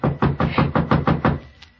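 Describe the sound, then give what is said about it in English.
A rapid run of about seven or eight loud, evenly spaced knocks on a wooden cabin door, followed by a brief quiet tail. No one speaks. “Someone at the door.”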